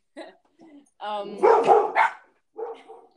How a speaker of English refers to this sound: Hold on. That's my doggy barking. Let's just let him out.